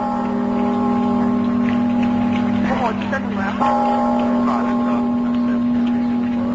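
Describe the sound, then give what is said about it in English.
A lone bell in the campanile tower at UC Berkeley tolls the noon hour, its deep, steady hum ringing on and then swelling again with a second stroke partway through, while faint chirps and background murmur drift underneath. “Students scramble to and from classes, while high above the campus, a lonely-sounding bell rings out the noon hour.”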